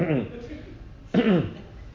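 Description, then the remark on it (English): A man coughs twice, fairly loud, during a Bible study: a rough, throaty burst at the start, then a second stronger cough about a second later, with no talking in between. “And I'm coughing.”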